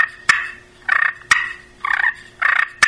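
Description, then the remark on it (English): Clear turkey hen clucks and purrs made on a turkey call, the sound of a content hen turkey: three sharp single clucks alternate with three short rolling, trilling purrs in a steady back-and-forth rhythm, with no talking. “another sound that we can make at this time would be clucks and purrs. And that's a hen turkey when she's real content.”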